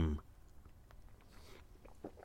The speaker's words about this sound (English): Quick slurp of coffee.